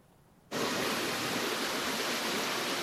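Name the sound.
river water flowing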